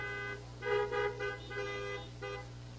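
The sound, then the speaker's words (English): Several car horns honk in short, overlapping bursts, some doubled and irregular, over a steady low engine rumble, with no talking; people honk their car horns in greeting at a worship gathering. “So you can smile, you can honk, you can wave.”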